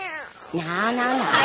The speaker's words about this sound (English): Now, Minerva. Better stop licking your paw. You know what it does to you. Meow.